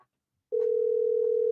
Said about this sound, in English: I hear the phone ring.